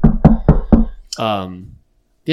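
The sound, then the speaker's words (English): Four quick, evenly spaced knocks on a wooden surface, fairly loud, followed by a short vocal sound and then the start of someone talking. “Matchup predictor has them a 79.6% chance to win, and I'll knock on wood right now.”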